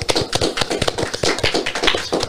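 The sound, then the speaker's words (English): A small group applauds, with rapid, overlapping claps forming a steady, lively patter that holds at an even loudness for a couple of seconds, with no talking. “Everybody, let's give a round of applause, you guys.”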